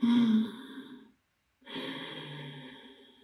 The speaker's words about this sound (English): Okay, so then do that with a closed mouth. So you can feel a slight restriction in your throat and almost like a Darth Vader sound in the back of your throat. So you want to do that on the in-breath and the out-breath.